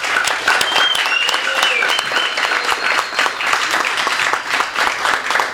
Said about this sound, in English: I think we should give her a clap on that one.